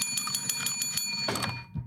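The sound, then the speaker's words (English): A bright bell rings rapidly and continuously with a metallic, clanging tone for over a second, then stops abruptly, leaving a soft thump and brief quiet. “I took that bell away from you. Here, you can have it back.”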